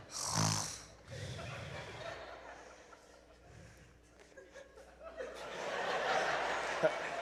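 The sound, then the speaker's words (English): A boy mimics snoring out loud: a sharp, nasal snort up front, then rough, rattling breaths drawn out over several seconds, with some chuckling mixed in. “I got in my notes that he should snore. I was just curious what it was going to sound like.”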